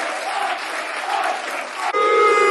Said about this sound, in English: Apart from Joel Narsha, you can hear the applause for Joel Narsha.